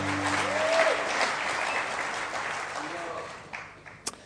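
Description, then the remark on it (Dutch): A crowd applauds the band steadily with dense, sustained clapping that gradually thins out toward the end, with a few brief tonal notes lingering underneath at the start. “Can we give the band a hand?”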